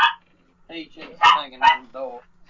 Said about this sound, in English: Wow, I hear dogs barking and everything. Apparently, Pussy's hanging on the door and the dog's going crazy. Yeah, there's Pussy hanging on the door and the bitch decided to go nuts.